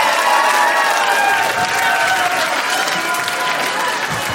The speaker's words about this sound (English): Don't encourage that. No more cheering. No. Stop your cheering. Don't get louder.